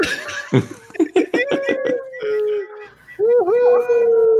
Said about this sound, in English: Oh my God, do you hear that echo? It's strong.